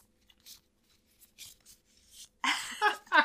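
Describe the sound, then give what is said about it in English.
Shuffling of a deck of game cards: a few soft, papery slides and taps, then a louder, rapid riffling flutter near the end. No one speaks. “Okay, then I'm just going to shuffle them. Maybe our audio listeners will get a bit of ASMR.”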